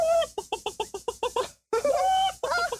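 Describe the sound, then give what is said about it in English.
A man imitates a chicken, with a quick run of about eight rhythmic clucks followed by a drawn-out squawking cry, loud with no other sounds. “He just started plucking like a chicken.”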